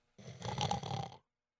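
An old dog lying under a kitchen table gives a single raspy, rattling snore lasting about a second, fairly loud, with no other sounds around it.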